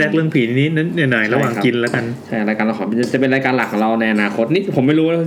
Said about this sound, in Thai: เสียงที่ท่านได้ยินอยู่ขนาดนี้ก็เป็นเสียงผมกำลังคุกผัดไทยนะครับ